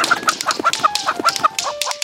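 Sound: chickens clucking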